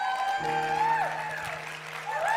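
A crowd claps and cheers for new family members throughout, a dense, sustained wash of applause with whoops rising over it and a steady musical drone underneath.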